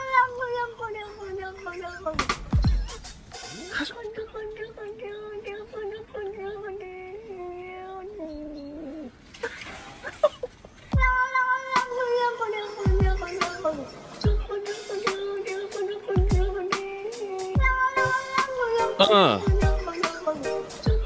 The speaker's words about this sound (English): So the beginning is the cat making that natural cat's sound, and then he puts the beat on it.